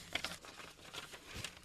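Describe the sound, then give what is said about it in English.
Soft, brief rustling and crinkling of paper being pulled out, a few crisp crackles over about two seconds, quiet, with no voices. “Can I pull out a piece of paper?”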